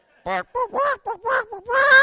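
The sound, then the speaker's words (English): A person vocally imitates a chicken clucking, producing a quick series of five or six nasal, clucking bursts that rise into a longer squawk at the end, loud. “Somebody give me a chicken out there. Has anybody got a chicken?”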